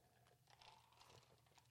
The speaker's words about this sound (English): Please pardon the sound of my drink. I am sipping upon some ice and soda water.